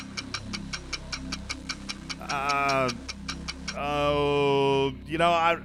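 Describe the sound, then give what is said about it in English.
A game show countdown clock ticks rapidly and evenly throughout, its sharp ticks coming several times a second while voices talk over parts of it, with eight seconds left on the clock. “8 seconds left on the clock.”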